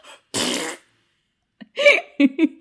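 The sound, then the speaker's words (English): A single loud, raspy farting noise lasting about half a second, made as a woman opens her mouth in a Facebook video, followed after a pause by a few short, pitched vocal bursts that sound like giggling. “But every time she opened her mouth, it made farting noises.”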